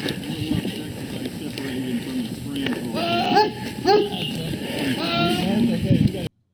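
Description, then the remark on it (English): A goat in a green field lets out several loud, drawn-out screams that sound eerily like a human yelling, with wavering bleats repeating over a few seconds against a steady outdoor background. “Is it a goat?”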